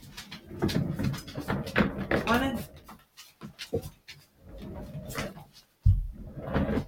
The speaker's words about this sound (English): Yeah, my dogs want to come in here with me. They want to enjoy the show.